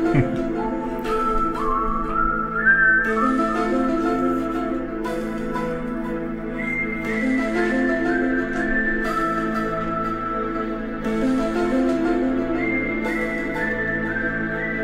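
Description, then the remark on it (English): A person whistles a TV theme tune, a clear, high melody gliding and stepping between sustained notes over a steady, dense musical backing, continuing for the whole stretch with no talking. “Whistle along if your Friday nights weren't football games and parties, but X-Files on Fox.”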